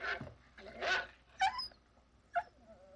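A dog named Lester barks in a few short, irregular bursts with tonal, whiny edges, moderately loud, with quiet gaps between calls and no talking.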